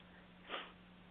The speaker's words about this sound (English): Everybody seems to have the sniffles now, too.